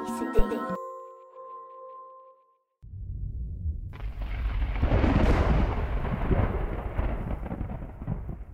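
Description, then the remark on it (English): A short bell-like chime fades out, then after a brief silence a deep rolling rumble of thunder swells into steady, loud rain hissing over continued low growls of the storm. “Maybe 20 years ago in Panama, that ended up in a small plane that ended up in a thunderstorm.”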